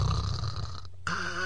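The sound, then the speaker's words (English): A male caller on a radio call-in show clears his throat with a rough, gravelly rasp, pauses briefly, then follows with a second, more voiced grunt. The sound is fairly loud, with no other talking. “is clearing his throat, and he is ready to just get after it, brother, because he is fired up about the Rammies and Michael Brockers.”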